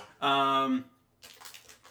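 A quick pour of a bubblegum-flavored Candy Floss drink into a glass, its tone rising briefly as it fills, then a softer hissing, fizzy rustle afterward. Fairly loud.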